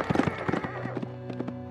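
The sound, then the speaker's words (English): A horse, startled by a wild pig, whinnies sharply and shrilly while hooves clatter in a quick burst of clip-clop, fairly loud over a brief, busy moment. “This must have startled the pua'a pig, which in turn startled the horse.”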